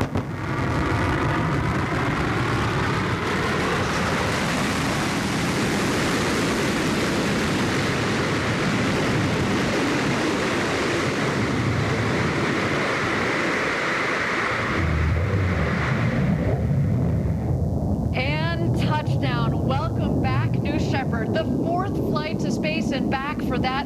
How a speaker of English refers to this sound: Wow, that gets me every time we do this live down here in Texas. The sonic boom is so cool.